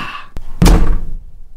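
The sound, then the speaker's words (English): A single heavy door slams shut with a deep, booming thud, preceded by a brief click and followed by a short fading rumble. “There's a door.”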